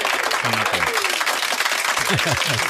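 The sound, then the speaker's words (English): A steady burst of applause on the Kiss 969 morning radio show, dense and fairly loud for a few seconds, with murmuring voices faintly mixed in beneath the clapping. “That's right. Round of applause.”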